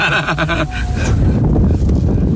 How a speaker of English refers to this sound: We just heard the 392 fire up, you know, with this dual mode exhaust that just makes you smile.